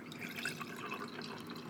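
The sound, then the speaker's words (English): A second mixed drink is poured into a glass, a steady trickling splash with bubbly, dripping detail, fairly quiet with no one talking. “Well, while I'm telling you about it, I'm going to pour a second one.”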